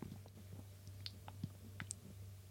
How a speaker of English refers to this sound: Okay, it's making like a clicking noise when I'm holding the phone. Is that...